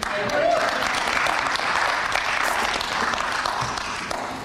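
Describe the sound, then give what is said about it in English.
An audience applauds steadily, a dense wash of many hands clapping at once that stays loud for the whole stretch, with a brief whistle-like tone near the start, then eases slightly at the end. “You may not be clapping when I actually finish.”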